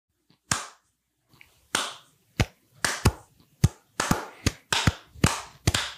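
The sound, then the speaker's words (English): Hands clap sharply, starting with a single clap, then a pause, then building into an uneven series of about a dozen claps, some in quick pairs, with no talking. “You can clap when you're in your car and stuff.”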